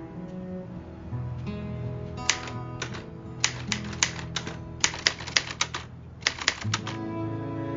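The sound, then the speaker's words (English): Sharp, clacking keystrokes arrive in quick, uneven bursts, like someone typing hard on a typewriter-style keyboard, fairly loud over a steady low tonal background. “Punch the keys, for God's sake!”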